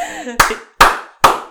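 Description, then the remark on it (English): A group does a church clap: three loud, sharp hand claps land at an even, steady beat about half a second apart, each ringing out briefly. A short hummed voice sound comes just before the first clap. “That's a real church clap, listen, y'all.”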